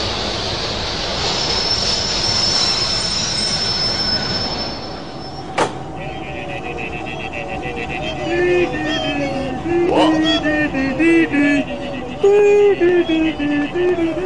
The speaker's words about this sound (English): Is this the D-train coming now? The D-train? Let me see.